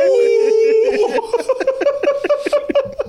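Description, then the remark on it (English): A man lets out a loud wolf-like howl while being shocked with electricity from a jumper cable, holding one sustained note for about a second before it breaks into a quick run of rhythmic, yelping bursts. “You ain't heard his ass say nothing, but then you heard him like, heard his ass out like a wolf.”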